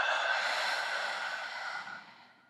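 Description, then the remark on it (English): A long, steady, airy exhale of a deep clearing breath being let out, holding level for about two seconds before tapering off gently at the end. No one speaks. “Let it out.”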